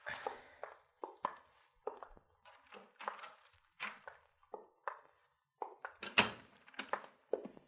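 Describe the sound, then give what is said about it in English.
A door thumps open and several men walk into a house without knocking, their heavy footsteps clomping across a wooden floor, with irregular knocks and shuffles over several seconds. “Most people knock before they come in here.”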